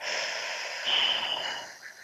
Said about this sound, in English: And as you're feeling in, I want to invite you to take a deep breath in through your nose, out through your mouth.